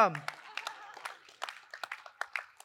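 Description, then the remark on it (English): A brief, sparse round of audience clapping: scattered, uneven claps from a handful of people, fairly soft, following the end of a spoken voice at the start. “So, we can clap, that's okay.”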